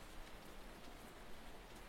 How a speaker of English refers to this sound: Now, the background that I selected here is very intentional. It's a little ASMR background that places you in a cottage where it's raining outside.